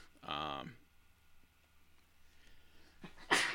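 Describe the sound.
A loud sneeze: a strained voiced build-up bursts out early, followed after a quiet pause by a sharp, hissing blast of breath near the end.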